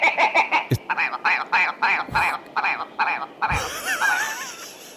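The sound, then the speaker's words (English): A jack snipe, a really small bird, calls: a steady run of rhythmic, hollow, knocking pulses, fairly loud, sliding into a faster wavering warble near the end. No voices. “In a sci-fi movie, this is a jack snipe.”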